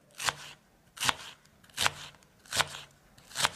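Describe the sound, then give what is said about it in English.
A knife chops onions on a board in five crisp, evenly spaced strokes, each a sharp crunchy thud. Fairly quiet, with no voices. “Chopping. Now your eyes should be getting watery. Onions, that's right.”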